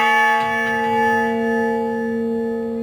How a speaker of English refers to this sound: Tell me more about what motivated you to build the Honor Bell.